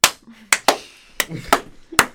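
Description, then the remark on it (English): A set of sharp, loud hand claps, about six in all, landing at uneven intervals rather than together, as if a sync clap attempt keeps falling out of step. “Oh, yes, we have to do a sync clap again.”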